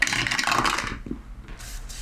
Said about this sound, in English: Yeah, can you roll? Yeah, I should roll dice. Although I'm famously bad at it and famously not cold.